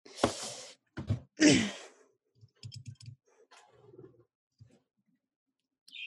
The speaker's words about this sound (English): again, the bird is really making itself known